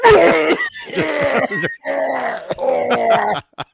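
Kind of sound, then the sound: human body sound, coughing fit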